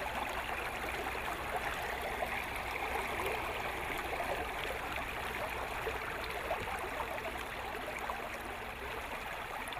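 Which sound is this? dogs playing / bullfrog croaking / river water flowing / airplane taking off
river water flowing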